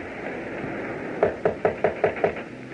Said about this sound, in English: Now, shall I knock?